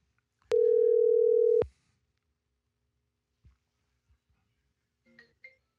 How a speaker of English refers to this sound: why don't we just call him right now? You want to listen to the phone call? Let's see if he catches that I'm calling him.